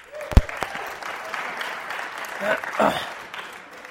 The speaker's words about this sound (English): Round of applause for Martin Luther.